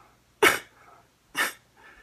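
Two sharp, explosive sneezes from a woman, about a second apart, each a loud breathy burst followed by a brief trailing exhale, with no talking.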